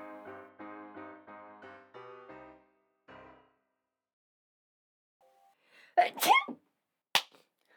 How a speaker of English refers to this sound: I don't think you needed that after my sneeze. No, it was a regular size sneeze. Oh, really? Yeah. I feel like that would have spiked higher. I think maybe because you turned or something.